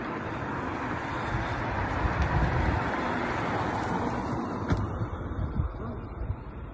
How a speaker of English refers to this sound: There's a string of buses that have been on the outside that are picking up these civilians that are currently trapped inside the city. Here's the video of the buses stuck waiting it through to extract some of the civilians.